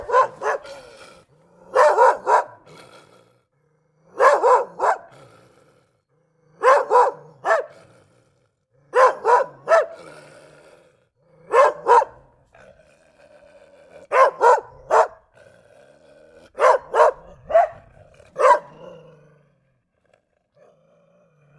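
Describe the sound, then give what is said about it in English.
A dog barks loudly in repeated short bursts of two or three barks, spaced every couple of seconds at a steady rhythm, with no one talking. “The dog needs to pee.”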